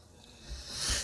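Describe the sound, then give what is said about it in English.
A single sneeze: a breathy, rising inhale that swells into a sharp, hissing burst near the end, with no talking around it. “So you have the obligatory sneeze and I have the obligatory yawn.”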